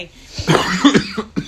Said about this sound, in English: So, as you can tell, we've all been a bit crooked this week, last two weeks. So, excuse our coughing. We'll try to move away from the mic.